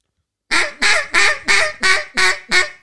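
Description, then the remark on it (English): A duck call blown in a run of seven loud, evenly spaced quacks, imitating mallards coming in to land; steady rhythm, with no talking. “However, when ducks are landing, this is what I've noticed is like instead of doing just the feeding chuckle, try doing something like this.”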